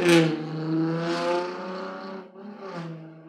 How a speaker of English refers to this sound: Okay, sorry about that. It's a loud car buzzing by.